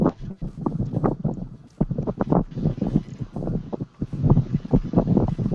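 Wind buffets the microphone with a steady low rumble that gusts and swells throughout, while muffled voices and faint rustling carry on underneath.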